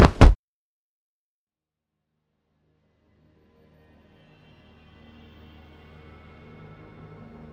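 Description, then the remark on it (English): A head thumps heavily onto the ground in two quick, dull impacts, then silence, before a low, faint droning rumble slowly swells in. “A tear fell down his cheek as pleas turned to silence, and were followed by the unmistakable sound of a head thumping to the ground.”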